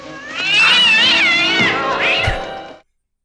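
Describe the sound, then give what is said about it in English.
A cat being thrown at someone lets out a loud, drawn-out yowl that wavers up and down in pitch for nearly three seconds, then cuts off abruptly with a brief low thump near the end. “Just throwing a cat at someone.”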